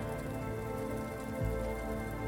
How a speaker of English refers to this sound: You see the storm of stress in front of you is very dark, and the storm clouds get thicker, raining down with fury.